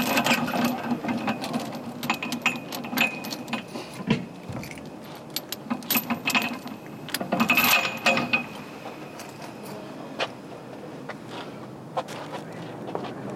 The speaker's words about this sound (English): Locking the bike.